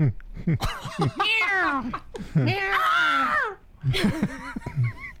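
A cat meows several times, drawn-out wavering cries that rise and fall in pitch, coming in quick succession with brief pauses between them.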